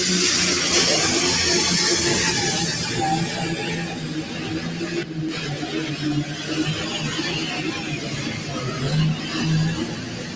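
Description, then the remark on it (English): A super stock pulling tractor, the Joker, of Johnny Trexler out of Gold Hill, North Carolina, roars loudly and continuously, a heavy, steady drone with shifting pitch and a harsh, hissing top end that fills the whole stretch. “Well, we're talking super stock tractors here.”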